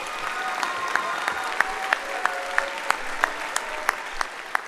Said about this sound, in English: Please give our senior class a huge round of applause.